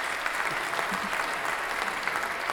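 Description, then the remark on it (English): A burst of steady applause, many hands clapping in a dense, continuous patter at an even loudness for a couple of seconds, with no voices over it. “And since we've been on a date there before, I mean, let's say we never been there together, but clap that up.”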